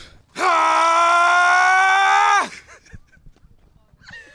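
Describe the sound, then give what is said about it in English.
A person lets out one long, loud, sustained yell lasting about two seconds, straining and steady like a cartoon hero powering up, then it cuts off abruptly into quiet background murmur. “That's like powering up. Gotta power up, go Super Saiyan.”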